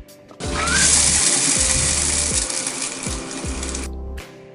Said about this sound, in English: When she felt calmer, she walked to the bathroom and turned on the tap to shower.